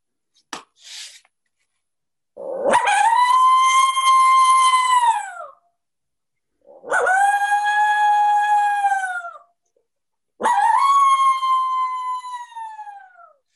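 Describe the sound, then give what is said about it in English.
Three long, loud coyote-style howls blown on an MFK Howling Mofo soft-latex diaphragm call held in the mouth, each rising sharply, holding a steady reedy tone, then sliding down, with short silences between and a brief click at the start. “Anybody, if you've used any sort of diaphragm call for turkeys or elk, you can put this in your mouth and make it sound like a coyote.”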